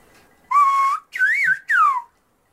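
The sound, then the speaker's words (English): Three clear whistled phrases of English speech, fairly loud, with gliding, rising and falling pitch contours that mimic the melody of spoken words, separated by short pauses. “Like, take a listen to these recordings of whistled English,”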